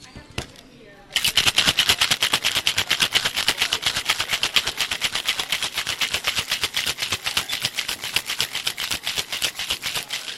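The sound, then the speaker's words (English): After a brief quiet moment, ice rattles hard inside a cocktail shaker, given a hard shake for a three-ingredient drink, in a fast, steady, loud clatter that keeps going without a break for about nine seconds. “We're going to add some ice to the shaker and give it a really good hard shake.”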